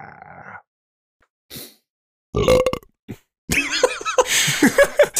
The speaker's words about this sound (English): Did that come out of someone else's mic? No, we both burped the same time. Oh, that was you burping? Yeah. Dude, that was so fucked up.